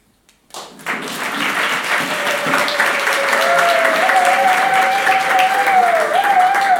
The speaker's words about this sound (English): you may just stand to your feet and we give you a round of applause.